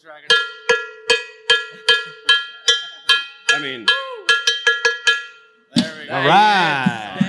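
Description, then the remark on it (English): A metal bell is struck by thrown axes about a dozen times in a quick, steady rhythm, each clang ringing briefly at a bright, fixed pitch. Loud voices burst in right after the last hit. “Well, which one of you is going to hit the bell?”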